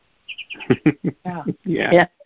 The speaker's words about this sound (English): A happy bird. A happy bird singing to a happy human. Yes, that's right. And even when he wakes me up in the middle of the night, you know, there's still a miracle there.